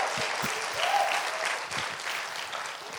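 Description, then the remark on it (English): An audience claps for the church leaders for a few seconds, a dense, continuous patter of many hands at a fairly constant loudness with no voices standing out. “So we can also clap it up for those, for the leaders above us.”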